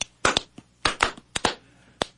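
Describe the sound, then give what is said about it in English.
A quick patterned run of about ten sharp hand claps, some in fast pairs and clusters, with short pauses between groups and no voices. “Everybody, and clap your hands like this.”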